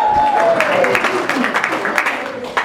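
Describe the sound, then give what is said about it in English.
An audience applauds, a dense, steady wash of clapping that stays loud for the whole stretch, mixed with crowd voices and a brief falling whistle-like tone at the start. “Louder applause!”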